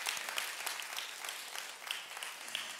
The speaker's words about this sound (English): Thus, we can clap it up, hallelujah.